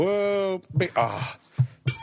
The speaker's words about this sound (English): Damn it. Service desk bells failed me again.